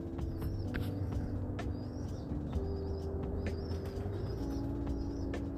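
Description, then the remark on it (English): A flock of birds passes overhead, flying steadily about 3.5 poles up and not going high, with steady low cooing tones under repeated high chirps and soft flutters, continuous, with no one talking. “They might be about 3.5 poles up. Flying steady.”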